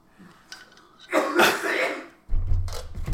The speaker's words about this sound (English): I think that's what triggered the fucking dab coughs. Oh, he got delayed dab coughs? Is that what's hitting? It's like deep bass lung.